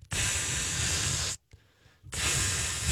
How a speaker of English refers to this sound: This stuff instantly aerosolizes. It's crazy. It's like you cannot feel it. So as I spray it directly on my man bag, I'm like, this is amazing. I can't even feel this going on, and it's right next to it.